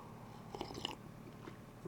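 A quick sip of coffee, with soft wet slurping and mouth noises clustered in a brief burst, then quiet. No one speaks.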